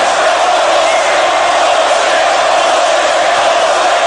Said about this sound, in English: What is this? Everybody's yelling bullshit, bullshit.